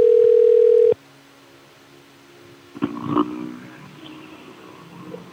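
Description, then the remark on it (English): A loud, steady telephone ring tone on an outgoing call to a music store, a ukulele store, sounds for about a second and cuts off, followed by a faint line hum, a sharp click and brief muffled handset noise. “All right, let's call this music store.”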